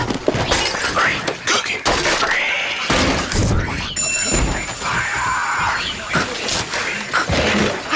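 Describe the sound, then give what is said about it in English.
Loud, chaotic crashing throughout as people fighting on a library balcony come crashing down, with wood and glass breaking, heavy thuds and shattering bursts as bodies tumble through furniture, with muffled voices mixed into the commotion. “Okay, back to this commercial where people are fighting on the library balcony, and then they come crashing down like an old Western.”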